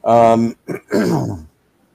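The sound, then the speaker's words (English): A voice imitates the wet, gurgling groan of a man with a chest wound who is coughing up blood, in three short, strained, fairly loud bursts, then falls silent. “So he's now gurgling as well.”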